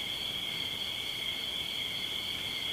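A steady, dense nighttime chorus of crickets trilling continuously, a high shimmering drone that holds level throughout with no pauses, like a field alive with insects.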